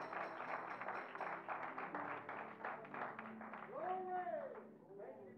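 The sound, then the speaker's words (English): An audience at a church gathering honoring mothers claps for the men who prepared the property and yard, a dense rapid patter of many hands at fairly loud volume, with a voice calling out over it near the end as the clapping thins. “They deserve a hand clap.”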